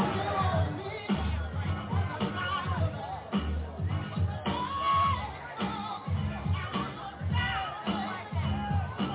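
A large rally crowd in South Carolina, gathered to see Trump, roars with sustained cheering and shouting, a dense wall of voices that swells and dips in waves, with occasional whoops rising above the din.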